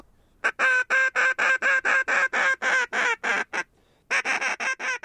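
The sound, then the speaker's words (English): A Ducks Unlimited biologist blows a duck call on Great South Bay, Long Island, in a fast, rhythmic series of loud, nasal quacks, about a dozen in a row, a brief pause, then another quick burst, calling to ducks that do not come, with no talking. “calling in vain to the ducks who chose not to take part in this story.”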